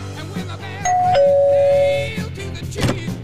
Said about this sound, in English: Go ring those doorbells, and whoever answers, you blow their heads off.